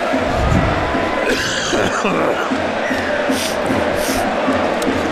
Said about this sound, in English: Apologies. My coughing and spluttering.